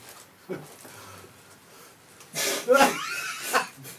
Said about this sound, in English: The cough-o-meter. We have to count the coughs.